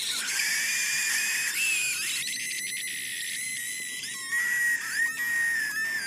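A koala's shrill mating scream: high, wailing cries with a strained, whistle-like edge that rise and break repeatedly over six seconds, loud, with no talking.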